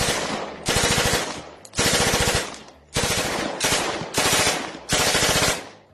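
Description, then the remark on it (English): Sustained bursts of rapid automatic gunfire, loud and harsh, arriving in repeated waves of roughly a second each with brief gaps between, each burst a dense rattle of cracking shots, as the ambush on Bonnie and Clyde's slowing car begins. “The car continued to slow, but before Bonnie could reach back and grab a weapon, the shots began.”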